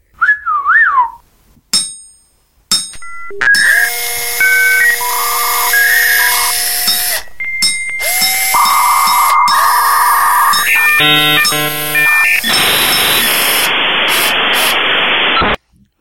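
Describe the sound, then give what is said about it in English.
Robotic chatter of the droid Argo-D2: a warbling whistle, then a rapid run of electronic bleeps and sustained synthetic tones, ending in a long burst of static hiss. Fairly loud, with no talking. “It means that Argo-D2 doesn't need to speak in bleeps and whistles.”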